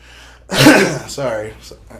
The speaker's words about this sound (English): Sorry for the aggressive coughing. If it becomes too much, I might edit some stuff out, so don't be surprised if this just sounds glitchy as fuck.